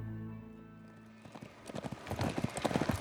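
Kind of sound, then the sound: animal, horse hooves clip-clopping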